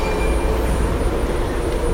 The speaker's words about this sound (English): Okay, the train arrived, and once again, the wait was over, and it was long-ish, 6 minutes, maybe a little bit more, but it was fun.